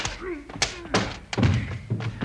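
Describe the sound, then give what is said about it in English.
A quick flurry of heavy punching thuds, about four dull blows in two seconds, with a brief strained vocal sound at the start, as two men are knocked out. “I had to get their guns away from them and then knock them both out myself.”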